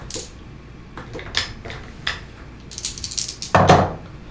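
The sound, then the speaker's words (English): Three ten-sided dice rattle and clatter across a hard surface in a run of sharp, bright clicks, ending in a louder tumbling burst before settling. No one speaks. “I need you to roll 3 ten-sided dice.”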